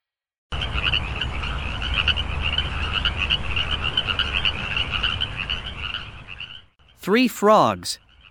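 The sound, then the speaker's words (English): A dense chorus of frogs croaks continuously and steadily for several seconds, loud, then cuts off as a voice briefly starts speaking. “Three frogs exploring the forest decide to find a place to sleep since it was becoming late.”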